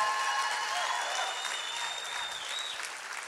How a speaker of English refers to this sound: How many of you all appreciate the pastors of our church? Let's give our pastors a big clap.